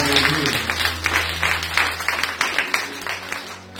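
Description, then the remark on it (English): An audience claps hands for Jesus in a dense, steady burst of applause, loud and continuous for several seconds before thinning out at the end, with a low hum underneath. “Clap hands for Jesus.”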